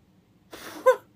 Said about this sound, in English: Sorry, there's someone outside my window, like, coughing and, like, sneezing at the same time. It's a very puzzling sound.